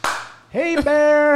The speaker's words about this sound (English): because there's signs and it says for the signs, you know, be aware of bears, make a lot of noise, make sure you clap your hands, yeah.